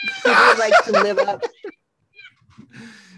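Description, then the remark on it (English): A cat lets out a loud, drawn-out meow lasting about a second, followed by a few faint sounds and a brief murmur of a voice. “Sorry, my cat.”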